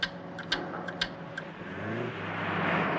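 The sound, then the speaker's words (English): A few sharp ticks and clicks, then the engine and road noise of a white Jaguar E-Type swell steadily louder as it speeds along in a 1967 film car chase. No voices. “The car chase sequence was pretty high-tech back in 67.”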